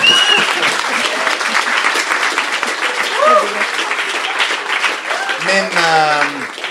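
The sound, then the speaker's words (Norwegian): Loud, steady applause from an audience fills the whole stretch, dense clapping without pause, with a few voices calling out over it, including a rising whoop near the end. “Stor applaus”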